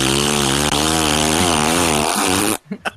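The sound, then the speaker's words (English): A voice imitates the rubber gasket around a door flapping in hurricane-force winds at a Disney value resort: a loud, continuous buzzing, raspberry-like blat with wavering pitch for about two and a half seconds, then a couple of short sputters. “So, and I will say this, when hurricane force winds blow past your door, they will cause the rubber seal, the rubber gasket around your door to sound like heavy duty flatulence.”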